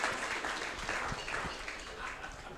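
A crowd applauds steadily, many hands clapping at once in a dense, even wash of sound that holds its loudness throughout the short stretch.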